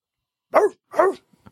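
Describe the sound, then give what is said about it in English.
Someone imitates a dog barking with two loud 'woof' sounds about half a second apart, followed by a couple of faint clicks, with no talking. “Bark is worse than his bite.”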